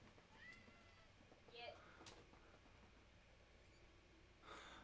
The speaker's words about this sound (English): Hang on, the cat is screaming. Yeah, I hear it.